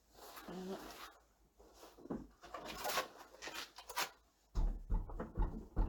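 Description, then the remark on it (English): A heavy wooden door with no cables is pushed closed with creaks and scraping, settling with a dull, low thud instead of a slam, with faint voices in the background. “That does not slam shut. There's no cables. It just doesn't do it.”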